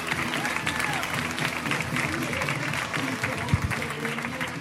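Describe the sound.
An audience at a comedy show applauds steadily for a comedian in town from Denver, a dense wash of many hands clapping at a constant level for several seconds, with scattered whoops and crowd voices mixed in.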